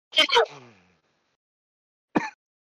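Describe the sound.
Two sharp, explosive coughs burst out in quick succession, trailing off into a brief voiced rasp. After a silent pause of over a second, one shorter cough follows.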